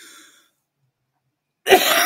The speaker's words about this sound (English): Wow. I haven't been coughing until I got on the air.